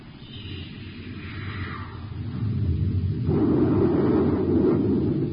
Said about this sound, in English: Fire a space torpedo close to his port side, Hap. Let him know we mean business, too.